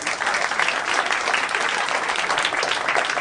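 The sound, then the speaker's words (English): Steady audience applause fills the room as the audience votes by applause on wishing they could take a shower, a dense wash of many hands clapping at once, loud and sustained throughout without pause or voices standing out. “But how many people in the room consider it a like, oh boy, I wish I could take a shower. Like by applause.”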